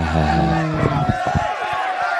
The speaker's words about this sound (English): I don't have the applause thing. You don't have the applause thing? Woo! Yeah, it's applause, not sarcasm.